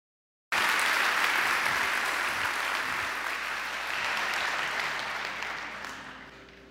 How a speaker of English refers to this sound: Can we give Jesus a big hand clap? Amen. God bless you.